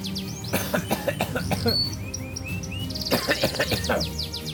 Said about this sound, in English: Oh, what's that? Hold on a second. The Canary Song returns.